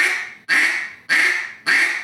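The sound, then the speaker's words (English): Four loud, nasal duck quacks blown on a duck call, evenly spaced, each sharp at the start and trailing off slightly, with no talking. “If you was to take a quack and just do a quack.”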